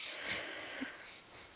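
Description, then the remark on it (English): A soft, breathy yawn, a long airy exhale that stays quiet and steady for over a second, with no talking. “Sorry, I keep yawning in your ear.”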